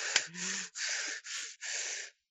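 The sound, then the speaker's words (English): A voice imitates loud, heavy nasal breathing: four long, hissy huffs in a steady rhythm, prominent, with a brief click at the start and no talking. “Breathing nasally.”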